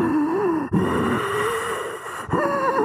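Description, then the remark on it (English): A voice imitates heavy, raspy breathing down someone's neck, drawn-out groaning breaths broken by two short pauses, loud and continuous for a few seconds. “I felt someone breathing down my neck.”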